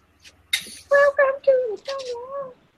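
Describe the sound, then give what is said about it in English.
A human voice imitates bird calls at the edge of a jungle: a quick run of cooing, warbling hoots with sliding pitch, several short notes close together, fairly loud, with no other sound behind them. “You hear birds, small things in the underbrush.”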